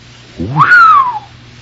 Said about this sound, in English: Whew. It was the first time man had ever whistled at a chick.